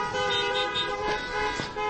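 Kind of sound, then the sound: vehicle, car horns honking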